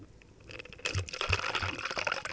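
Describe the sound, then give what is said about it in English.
After a brief quiet moment, liquor is poured into a glass, meant as a thimble full, a splashy trickling gush lasting about a second and a half before it tapers off. “I'm going to pour a thimble full there.”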